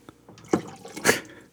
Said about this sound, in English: Sorry. We're all washing our glasses right I now. Was, so. Yeah, I apologize for all of the liquid pouring.